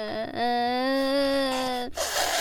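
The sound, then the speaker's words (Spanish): A child cries: a short whimper, then one long, loud, steady wail, ending in a breathy sniffle. “Ya cállate, te voy a pegar para que llores por una buena razón. Además, pareces niña llorando.”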